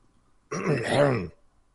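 A single, close throat clearing, a short rough rasp lasting under a second, heard on its own against near silence.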